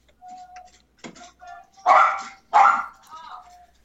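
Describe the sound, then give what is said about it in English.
A dog lets out two loud, sharp barks in quick succession, preceded by a few softer yips and whiny sounds, all clear. “It's nice to have someone else's dog on the podcast for a change.”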